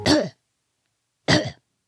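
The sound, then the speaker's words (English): A cat, the Duchess, hacks up a hairball into a porcelain cup that a human holds beneath her mouth: two short, raspy coughing bursts about a second apart, fairly loud, with silence between them and no talking. “The Duchess continued coughing. One of her humans appeared and swiftly shoved a porcelain cup beneath her mouth. She coughed her hairball into it.”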